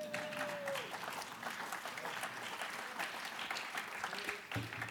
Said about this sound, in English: Go ahead, clap. Yeah.